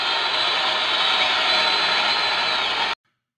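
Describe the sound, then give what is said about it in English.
The crowd at a Red Sox versus Cincinnati baseball game roars after the Red Sox tie the score 6–6 in the bottom of the eighth inning, one loud, steady wall of hiss-like noise that holds for about three seconds, then cuts off abruptly to silence. “Listen to that crowd.”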